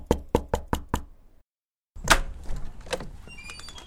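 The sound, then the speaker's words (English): Five quick, evenly spaced knocks rap on a door, then a short silence before a louder thump and a stretch of rattling, shuffling movement. “I mean, I was gonna knock on the door in here anyways, but I guess I don't really have any choice.”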